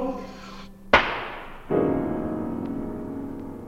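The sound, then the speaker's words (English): A single sharp bang from a firecracker exploding inside a grand piano cracks out, followed by a ringing, jangling wash of the piano's strings that fades into a sustained, humming musical chord. “I once shot a firecracker off in a grand piano.”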